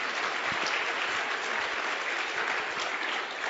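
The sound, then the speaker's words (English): An audience applauds a preacher during a sermon, a dense, even wash of many hands clapping steadily at a consistent loudness, with no voices standing out. “You better clap.”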